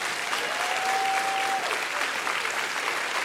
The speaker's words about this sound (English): Give Jesus a hand clap for this message.